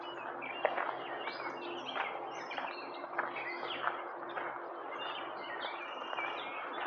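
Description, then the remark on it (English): A chorus of birds chirps and sings continuously outdoors, many overlapping calls layered into a busy, fairly soft background of tweets with no one talking. “These are happy birds, huh?”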